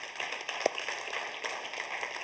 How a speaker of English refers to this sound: But please, above all else, do not be afraid to be compelled by the love of Jesus Christ. If that, yeah, you can stop and clap for that.